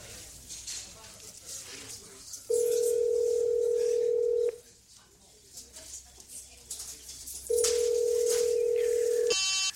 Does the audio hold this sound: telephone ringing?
yes